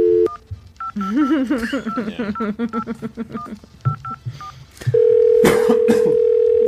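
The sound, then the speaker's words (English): Short electronic keypad beeps of a phone being dialed, scattered between a person's voice, followed by a loud, steady continuous tone with a brief burst of noise over it. “Let's get Gene Roddenberry on the phone.”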